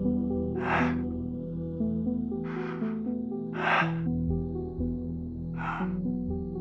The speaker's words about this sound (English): A minute and a half long. I pressed play. It began with several seconds of heavy breathing.